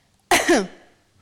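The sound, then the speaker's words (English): A single sharp cough given as a yes signal in a cough code, a loud burst that quickly tails off, with quiet on either side and no talking. “On reflection, the cough method was probably the wrong idea during the pandemic, I think.”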